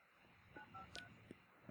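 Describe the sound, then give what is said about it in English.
Three short phone keypad dialing tones beep in quick succession as a number is dialed on a phone put on speaker, fairly soft, followed by a faint click over quiet background noise. “And so just put this on speaker.”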